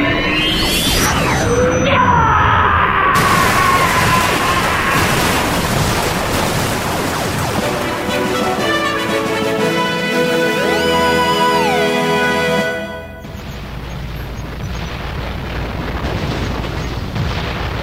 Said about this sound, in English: That is sure some explosion, lit up like a cat strapped to a cherry bomb.